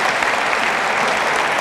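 crowd noise

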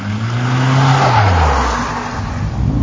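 cars driving

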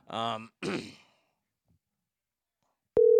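phone call ringback tone

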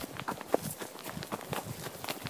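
horse hooves walking

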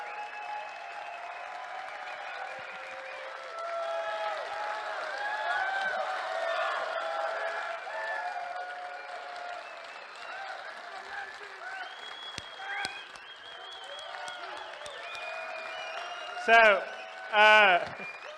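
audience applause

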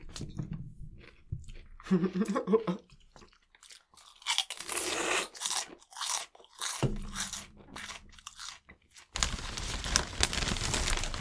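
chewing food

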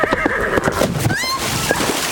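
horse neighing

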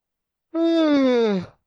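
yawn

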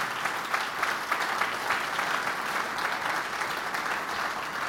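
audience clapping hands

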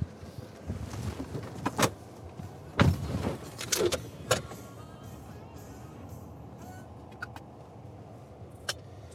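inside a car

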